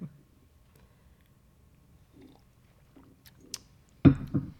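Quiet sipping of freshly brewed Paper Street Coffee: a few soft wet mouth sounds, then a louder slurp and swallow near the end, with no talking.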